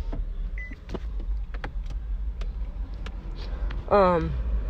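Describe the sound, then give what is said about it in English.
Inside a car with a low, steady engine rumble and scattered clicks, the car's power window motor starts near the end, whining loudly as the window lowers. “Like, my fucking windows don't come down. Oh, no, they do come down.”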